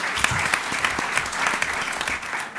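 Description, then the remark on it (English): A crowd claps steadily, a dense, sustained wash of many hands applauding together with no break, fairly loud throughout, giving a round of applause at a panel discussion at Stanford University. “I'd like to give a round of applause for the Academy.”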